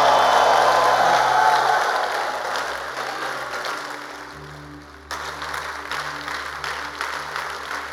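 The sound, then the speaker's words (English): A crowd claps together in praise of God in a dense, continuous wash of applause, loudest at the start, easing off, then picking up again, with a low steady hum underneath and no talking. “Are you sure you are clapping?”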